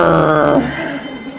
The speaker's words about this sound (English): Oh, that truck's gonna cut off my podcast. Look at that. You hear that?